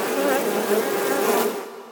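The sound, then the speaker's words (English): A dense swarm of bees buzzes loudly and steadily, a continuous droning hum that wavers slightly in pitch before tapering off at the end. No voices are heard. “Killer bees!”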